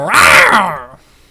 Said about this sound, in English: That's why he's growling. I don't know if that's a lion